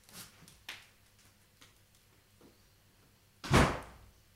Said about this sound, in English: Sorry, the wind was just blowing the door open.